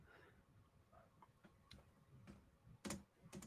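Quiet, irregular clicks of keys being tapped on a computer keyboard, a handful of light strikes with one sharper, louder burst near the end, with no talking.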